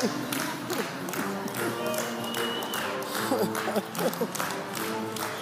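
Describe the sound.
An audience claps steadily and densely throughout, a sustained wash of many hands with voices calling and murmuring underneath, holding at a fairly loud, even level.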